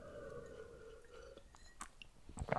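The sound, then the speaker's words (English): A quick sip from a drink, heard as faint wet mouth clicks and a soft slurp and swallow near the end, with a low steady hum underneath and no talking. “Quick sip of the drink.”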